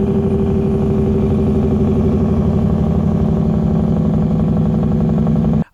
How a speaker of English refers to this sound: I'm going to say a big rig. I don't know what it is.